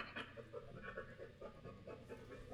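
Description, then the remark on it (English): A dog pants rapidly and steadily into the microphone, quick rhythmic breaths filling the short stretch with no talking. “gonna be breathing in the microphone.”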